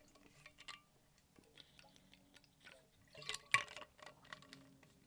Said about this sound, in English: quick water break.